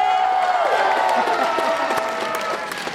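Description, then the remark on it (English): A crowd claps and cheers loudly and steadily for about three seconds for a costumed contestant called the little blue demon, the dense applause mixed with excited shouting voices before easing slightly at the end. “Give this little blue demon a round of applause.”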